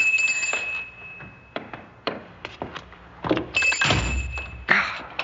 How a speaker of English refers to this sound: This old door. It's on a latch, but I have to be sure it locks. There.